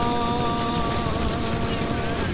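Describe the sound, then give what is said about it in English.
Rapid video game gunfire aimed at a helicopter crackles in a dense, continuous burst, with the helicopter's steady mechanical drone humming underneath. It stays loud and even throughout, with no clear pauses. “I just wish that they would have allowed you to blow up the helicopter with enough gunfire.”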